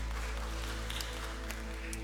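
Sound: audience clapping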